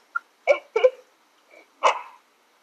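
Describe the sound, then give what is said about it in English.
A dog barks several times in short, sharp bursts, a quick pair followed by a softer yip and one more loud bark, with no talking. “Like, your dog is really not happy about all this furry talk.”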